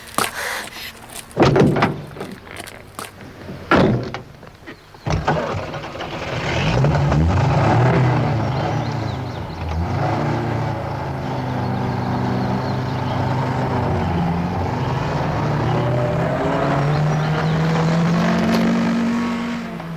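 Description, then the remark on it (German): A few sharp knocks and door-like thuds, then a car engine starts up and revs steadily as the vehicle quickly pulls away, its pitch climbing and holding, loud throughout. “Jetzt zum Wagen und schnell weg.”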